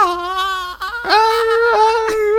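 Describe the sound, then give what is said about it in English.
A human voice imitates the scream of the Pokémon Lapras, a sustained high, wailing cry with a brief break partway through before it resumes, loud and alone with no talking. “I was just about to mention the scream that someone did an imitation of Lapras's scream.”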